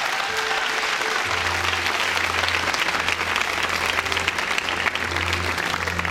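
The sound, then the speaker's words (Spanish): A large crowd claps loudly and continuously as applause to God, a dense wash of applause with a low steady hum underneath and no voices standing out. “Dale ese aplauso fuerte a Dios.”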